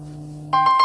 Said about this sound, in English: Ooh, my alarm just went off. Hey, time to wake up.